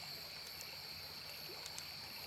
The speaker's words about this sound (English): the sound of river and of river homelands, the sweet babble of running water lapping against the banks